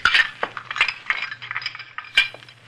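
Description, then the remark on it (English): Dirty dishes clink and rattle together in a quick, irregular series of bright knocks as a stack of plates and cups is picked up and carried out into the kitchen, with a low hum underneath. “Might as well get some of these here dirty dishes out into the kitchen.”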